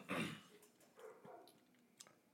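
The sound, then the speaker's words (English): A dog gives one sharp, loud bark, then a few fainter, shorter barks and yips follow over the next two seconds against a quiet background. “What the fuck? Damn dogs. Again.”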